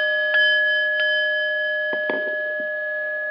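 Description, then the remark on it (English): A meditation bell rings to begin a guided meditation, with a long, steady, shimmering tone that sustains throughout, after a couple of light strikes near the start, with a few soft knocks and rustles underneath. “Listening to the sound of the bell,”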